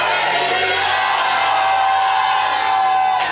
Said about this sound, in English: Hallelujah. Amen. And if I were you, I would have shouted a louder hallelujah.